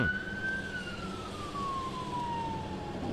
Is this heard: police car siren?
yes